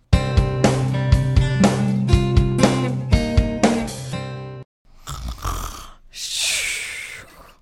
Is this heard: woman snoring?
yes